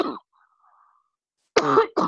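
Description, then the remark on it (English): A person coughs: a short cough, then a brief pause before two quick, harsh coughs in a row, loud and raspy with no talking. “I'll watch the cough.”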